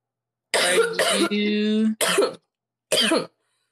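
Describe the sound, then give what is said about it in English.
A series of harsh coughs in uneven bursts, two quick ones, a short strained vocal sound, then two more spaced coughs, with no talking. “I keep coughing when he's talking, and I'm turning red”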